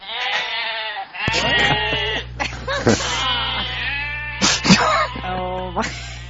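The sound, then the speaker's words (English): Several goats bleat in quick succession, their wavering, nasal cries overlapping and fairly loud, with a low steady hum running underneath for most of the time. “Very non-speciesist goats, very tolerant goats.”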